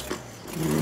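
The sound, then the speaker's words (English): A truck engine rumbles low and then climbs in a quick rev, its steady drone swelling louder over less than a second, with no voices. “All right, I'll get in a truck.”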